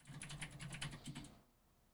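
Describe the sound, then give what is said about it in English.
Rapid keyboard typing of a message, a quick run of clicky keystrokes for over a second, then it stops and falls quiet. “Hold on, I'm typing a message real quick.”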